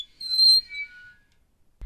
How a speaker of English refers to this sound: Back and forth, with a rhythmic squeak of a swing set.